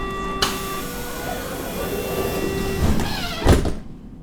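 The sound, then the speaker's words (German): A Berlin Ringbahn S-Bahn train, the S41 to Hermannstraße, idles at platform track 1 with a steady hum and tonal whine, then a sliding door thuds shut with a sharp burst near the end, fairly loud. “Eingefahrener Zug auf Gleis 1, S41 nach Hermannstraße.”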